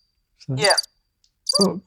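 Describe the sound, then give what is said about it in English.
A thin, steady cricket chirp runs faintly throughout, broken by two short, drawn-out vocal sounds with gliding pitch that rise over it and then fade. “And they used to be like crickets, didn't they?”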